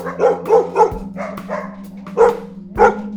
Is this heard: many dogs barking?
yes